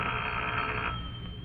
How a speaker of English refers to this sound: and waited for the phone to ring. I must have fallen asleep after a while. It was quite dark when the call came through.